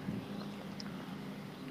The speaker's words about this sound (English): Sorry, I got like a tractor going by behind me. Oh, no worries. And we live, like, basically in the city, so I don't know what the fuck it's doing.